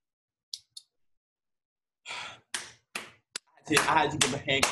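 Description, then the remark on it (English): One person gives a few separate hand claps, then a quick burst of rapid clapping that grows louder, with some breathy sounds mixed in. “I had to give the hand clap because she spoke it.”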